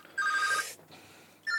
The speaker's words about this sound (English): That's not my phone. That's that one.